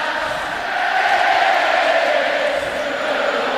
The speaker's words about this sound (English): a Yankee faithful at the stadium were going to serenade the Mariners, as you knew they would, as their season comes to an end. That's when all those great chants began echoing all over the place with overrated. Overrated!